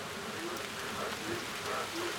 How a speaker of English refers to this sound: Oh, I knew it was going to rain. Ooh, I think the frogs are enjoying the rain.